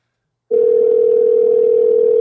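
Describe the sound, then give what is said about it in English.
After a half-second of silence, a steady, loud telephone tone begins as a call is placed and holds unbroken to the end, a single continuous hum with no voices, a long delay before the phone rings. “That's a long delay before the phone rings.”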